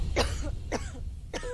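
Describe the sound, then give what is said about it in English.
Three short, harsh coughs in a row from a wife in an advert for Chinese medicine, evenly spaced about half a second apart, moderately loud with a dry, throaty edge. “How dare you interrupt you. Me with your damn coughing, you know.”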